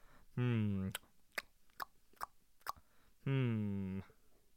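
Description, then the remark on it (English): Crisp smacking of gum being chewed, five quick wet clicks in an uneven rhythm, set between two long hummed vocal tones. A voice seems to be mimicking the chewing. “Chewing on some gum.”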